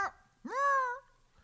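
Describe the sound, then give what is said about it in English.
A person's voice imitates a cat with one drawn-out, nasal meow, rising and then holding steady for about half a second, clear with nothing else around it. “They just go, meow.”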